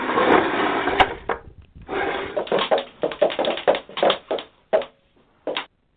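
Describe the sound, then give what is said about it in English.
The handle of a locked door is rattled and jiggled hard in irregular clattering bursts, fairly loud, with brief pauses between attempts and no voices; the door will not budge. “The door, it seems to be locked.”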